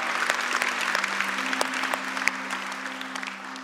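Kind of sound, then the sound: crowd, audience applauding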